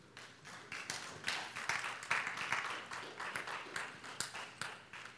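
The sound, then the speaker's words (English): Scattered clapping from a few people, uneven sharp claps spread across about five seconds, moderately loud with no voices over it. “I appreciate those alone claps.”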